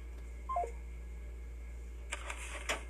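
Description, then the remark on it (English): A brief electronic voicemail beep after an automated message that extension 260 does not answer, faint and slightly stepped in pitch, followed by a few soft clicks and rustling bursts over a low steady hum. “extension 260 does not answer at the tone, leave a message.”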